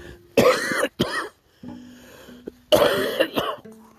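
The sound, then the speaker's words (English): Two harsh, raspy coughing fits from a person with a cold, each a loud burst followed by a short throaty rattle, separated by a brief quiet pause with faint low hum. No one speaks. “Pardon me, I've got a cold.”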